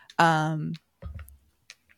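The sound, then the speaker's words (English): A brief vocal sound comes first, then a few small, sharp clicks of a fidget toy tick sporadically, light and irregular. “I was like, is it my microphone? It's my fidget toy because I literally can't sit still.”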